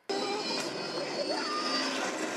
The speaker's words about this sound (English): That's her car blowing up.